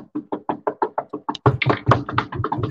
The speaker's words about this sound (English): Knocking on wood a lot with that one.